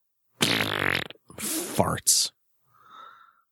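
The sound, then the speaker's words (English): Several loud fart noises in quick succession: a long buzzy blast, a rougher sputtering one and a short sharp pop, then a softer, higher-pitched squeak trailing off. “Farts.”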